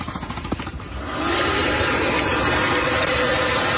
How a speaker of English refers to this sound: Yeah, that's what a massive gator sound like. Right before they kill you.